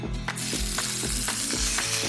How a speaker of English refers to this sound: I'm using vegetable oil. If you don't have vegetable oil, you can use canola. And I'm shallow frying these in my cast iron skillet. And I'm just frying enough till it gets golden brown.